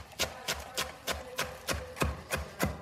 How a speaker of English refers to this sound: And what I like to do is I just like to bundle it up into a tight bunch and just run my knife right through that. So many good sounds. Lots of chopping of fresh, beautiful ingredients here.